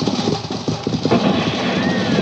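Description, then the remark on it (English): Rapid hoofbeats of horses being driven pound in a quick, irregular rhythm under a dense, noisy wash as they gallop hard; a faint rising whine cuts through near the end. “You drive them horses.”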